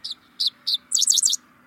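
A dickcissel sings alone: three short, separate high chips followed by a quick buzzy trill of rapid notes, bright and fairly loud, over a faint low hum.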